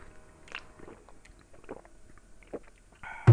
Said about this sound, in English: Some cold water. Why do we do that after you drink it? After you take a drink, why do we do that? I don't even think about it. It just happens.